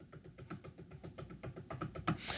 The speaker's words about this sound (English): There's also like a wood armrest on the chair. I'll kind of like drum my fingers on.